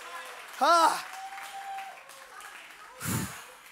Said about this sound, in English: See, and we got some people shouting because they've been through it. Some of y'all are like, "These people are excited."